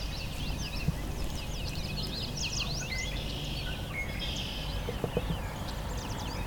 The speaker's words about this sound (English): I'm coming along here and I've got some marsh wrens vocalizing. Question is, can I get them close enough to hear them well? Like a tinnier version of the swamp sparrow song. Like a swamp sparrow in a tin can.